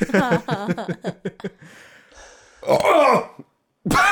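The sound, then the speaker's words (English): A loud, rasping burp lasting about half a second, with a gravelly tone that drops in pitch, comes after a stretch of voice and is followed by a short silence. “I'm sorry, I just farted out of my face.”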